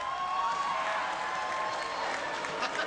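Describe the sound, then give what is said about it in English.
A crowd boos a woman after her question about World of Warcraft's female characters, a steady, sustained roar of many voices holding at an even, fairly loud level for the whole stretch, with no single speaker standing out. “She gets booed.”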